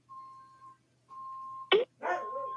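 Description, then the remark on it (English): A dog lets out two loud barks, one short and sharp, then a longer rougher one, while the steady electronic beeping of an Amazon delivery truck sounds in the background. “Henwolf starts barking, and then my phone rings”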